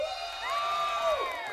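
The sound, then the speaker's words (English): A class of kids in the classroom next door erupts in excited screaming, whooping and applause, many voices overlapping in a steady, loud burst that holds for the whole moment. “Screams and applause erupted from Moe's class next door.”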